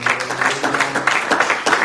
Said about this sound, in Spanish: Amén. Amén. Un aplauso al Señor.